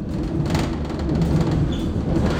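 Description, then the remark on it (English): Steady low rumble of a moving train carriage heading to Plaistow in East London on a chilly November morning, with continuous mechanical hum and faint rattling, no voices present, a constant ambience. “By the time I'm at the train station to make my way to Plaistow in East London, I realize I'm unmistakably underdressed.”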